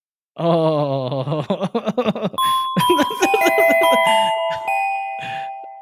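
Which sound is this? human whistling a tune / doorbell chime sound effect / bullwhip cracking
doorbell chime sound effect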